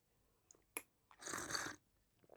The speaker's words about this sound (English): Let me take another sip of this truth serum.